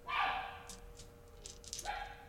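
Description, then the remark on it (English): A person imitates a dog, giving two loud barks: a long one at the start, then a shorter one after a pause with faint background noise. “You can't bark in space. It's the rule.”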